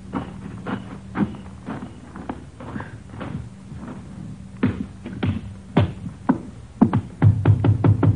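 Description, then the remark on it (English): Knocking on a wooden front door, several series of firm, sharp raps with short pauses between, growing quicker and louder toward the end, with no voices. “Wait till you hear me knock and get in.”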